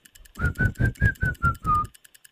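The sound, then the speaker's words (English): A person whistles a quick series of seven short, steady notes in an even rhythm, the last held a little longer and dipping slightly, breathy with no talking. “Bird? No, you... Whistle? Yes.”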